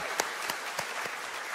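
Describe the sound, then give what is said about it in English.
Church audiences at campuses cheer for each other in a dense, steady wash of applause, with scattered sharper claps popping out above the continuous noise for the whole short stretch. “Let's cheer for each other.”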